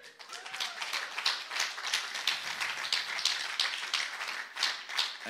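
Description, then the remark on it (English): Steady applause from a crowd as a man enters the stage, many hands clapping in a dense, continuous patter with no voices, holding at an even level for several seconds. “Are you milking the applause, mate?”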